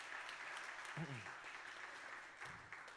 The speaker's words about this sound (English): So, yeah, you can give her, yeah, you can give her some applause.